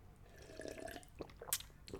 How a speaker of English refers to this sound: Quick sip of water. Water break, boss. Don't mind if I do, boss.